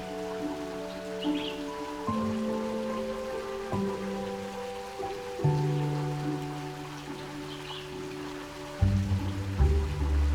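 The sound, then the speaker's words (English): A stone fountain carved with two cherubs, in the center of a garden: water flows out from one cherub and splashes steadily and gently into the water of the basin below, a continuous soft patter, with low sustained musical tones shifting beneath it throughout. “Water tunnels out from the heart of one of the cherubs, splashing gently into the water below.”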